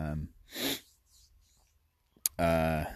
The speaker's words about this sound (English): So I'm genuinely tired. I think that might be a real yawn.